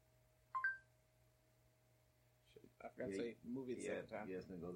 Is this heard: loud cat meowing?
no